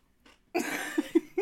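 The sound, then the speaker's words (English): A sudden crunch as someone snacking bites into a crunchy, very sour pickle, followed by about a second of wet, noisy chewing with a few short throaty murmurs mixed in. “It's a crunchy pickle.”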